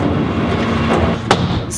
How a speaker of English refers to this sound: There's a garbage truck outside today.